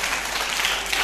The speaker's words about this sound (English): Give that all a clap.